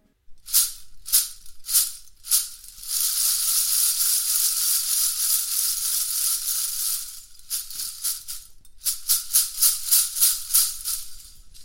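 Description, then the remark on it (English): A shaker made of recycled bottle tops, made by Leo Percussion in Brazil, plays bright, crisp rhythmic shakes, then a steady sizzling rattle for several seconds, then returns to quick evenly spaced shakes. No voices. “So that we'll start with things like a clump of old bottle tops, recycled bottle tops. Who would have thought? They sound so great.”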